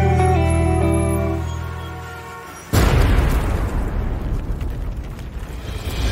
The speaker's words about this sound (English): While we look down at our phones, they'll drop a bomb from a drone, then an explosion.